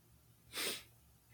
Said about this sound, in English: Sniff.